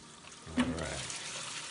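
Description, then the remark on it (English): Water runs steadily from a tap into a basin, filling an apple cider and water bath for washing vegetables; a continuous splashing hiss that starts abruptly and keeps going at an even level. “All right, so as my vegetables sit in this apple cider and water bath for about the good 5 minutes”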